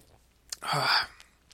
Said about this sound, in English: And before we wrap things up for you guys, I'm still coughing on this freaking Four Loko Black. I gotta take another sip to wash it down here.